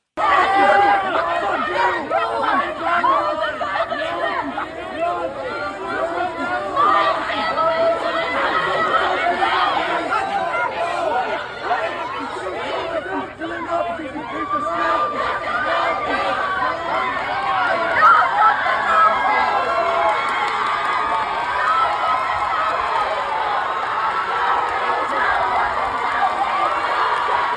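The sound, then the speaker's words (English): A large outdoor crowd at a pro-Palestinian rally at UNC Chapel Hill shouts and yells continuously, many voices overlapping in a loud, agitated roar with bursts of cheering, sustained throughout with no pauses. “Take a listen to this pro-Palestinian rally. This was at UNC Chapel Hill. And listen to the crowd.”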